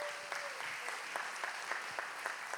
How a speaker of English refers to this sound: So can we give our students a round of applause as they're coming in?